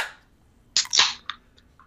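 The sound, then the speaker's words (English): Drink cans cracked open to celebrate a birthday, in quick succession, with sharp metallic pops followed by brief fizzing hisses, then a smaller click and a faint tap after a quiet moment. “We're going to crack them.”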